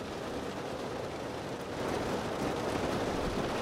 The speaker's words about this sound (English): Okay, it's really strong rain, man.